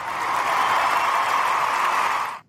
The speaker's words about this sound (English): I feel bad. I didn't give the other guys applause, but I didn't think of it.